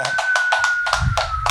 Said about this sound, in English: Let's clap it up for that.